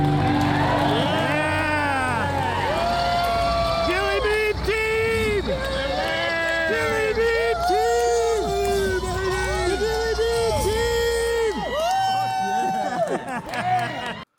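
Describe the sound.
A large crowd at a Saturday rally cheers loudly in reaction to a video, with many overlapping voices shouting and whooping in rising and falling calls, sustained for about fourteen seconds before cutting off abruptly.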